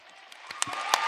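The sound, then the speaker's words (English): An audience starts applauding, a few sharp individual claps standing out over a steadily building hiss of clapping hands. No one speaks. “By round of applause, has anyone here ever been sitting at home and thought, I need to go buy a candle that smells like blank?”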